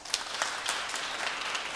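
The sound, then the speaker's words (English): A live audience claps to vote on an answer, a steady, dense patter of many hands, moderately loud, lasting the full couple of seconds with no voices over it. “All right, now clap if you think it's the song.”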